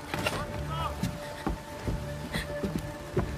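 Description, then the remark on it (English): A boat is pushed off into the water amid a busy clatter of knocks, creaks and sloshing, with several sharp thuds and faint voices in the background. “Launch the boat. Put food and water in it.”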